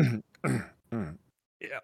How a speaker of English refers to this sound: Awkwardly clearing your throat.